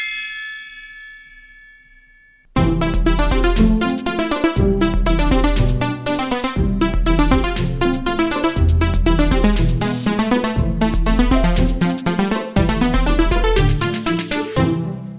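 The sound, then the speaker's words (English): A single gong strike rings out and fades for a couple of seconds, then loud, busy music with a driving beat bursts in and continues to the end. “Time to start the episode with the Parks and Rec Crew Watch Gong.”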